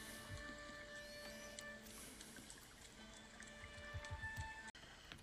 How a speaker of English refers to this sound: It's the rotating mill. The wheel spins round and round with the river as it pushes it, which helps turn the grindstone for both the flour and also for the lumber that gets brought in across the bridge.